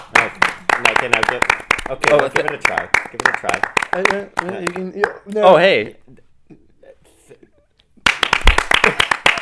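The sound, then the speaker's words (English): Rapid, sharp hand claps rattle on steadily beneath people talking, fall silent for a couple of seconds, then resume in another quick burst. “I needed to clap for myself.”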